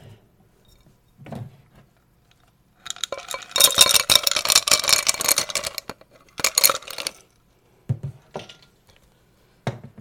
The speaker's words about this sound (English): The cocktail today is called Sex in the Woods. And you start off with adding ice to a glass.